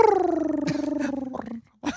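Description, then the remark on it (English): A cat asleep gives a single drawn-out, rumbling snore with a fluttering, pulsing texture, fairly loud, sliding lower in pitch before trailing off, followed by a brief rough breath. “And he finally goes to sleep, and he starts snoring.”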